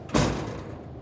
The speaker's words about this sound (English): The door flings open.